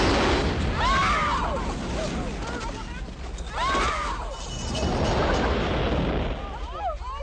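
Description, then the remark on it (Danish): A loud, rumbling sewer gas explosion on the lawn in front of a house fills the scene with a sustained roar of blast and debris, while voices shout and cry out over the noise. “Eksplosionen sender Onkel Louis på en flyvetur, og det samme gælder den smadrede plastikjulemand med rensdyr.”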